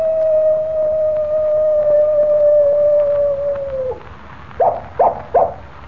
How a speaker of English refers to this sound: Did you hear that? I certainly did, Jimmy. It was a coyote. And here it comes now. Well, I'll be... Why, it's a real coyote. Yes, Jimmy. It's a coyote Rawson used.